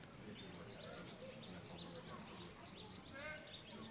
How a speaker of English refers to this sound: We got some of the resident birds making their presence known here at Joe Jabbo Jordan Stadium.